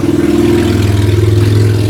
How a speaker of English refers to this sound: I'm going to let this hot rod go by. Wow, that was I've never seen a motorcycle like that. Yeah, it's crazy.